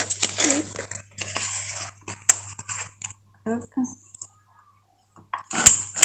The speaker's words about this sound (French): Comment ça fonctionne ? Ça fait des petits trous dans les feuilles, ça les plie et du coup les feuilles sont accrochées les unes aux autres. Très bien. Voilà. Hop. Une démonstration. Hop. Si je veux agrafer tout ça ensemble, c'est celle-ci.